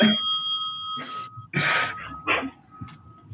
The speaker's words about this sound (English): The bell delay was kind of funny.